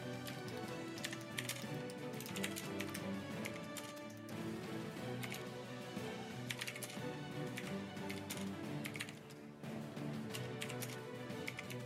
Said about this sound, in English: Typing, we can hear you. Oh crap! That's I was muted. My bad.